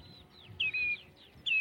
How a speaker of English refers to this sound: Red shanks and a flock of starlings going overhead